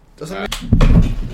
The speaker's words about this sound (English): Dude, I just heard a crack. I just bro. Heard a crack. You definitely actually, just broke the chair.